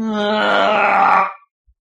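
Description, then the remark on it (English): A voice imitates the elongated death sound of a character dying in a video game, with one long, drawn-out groan of about a second and a quarter. It holds a steady low pitch, then fades out abruptly. “When people die, did they have a ridiculously elongated death sound?”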